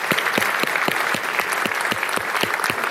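An audience applauds steadily, a dense wash of many hands clapping at a brisk, even pace, fairly loud throughout with no voices standing out.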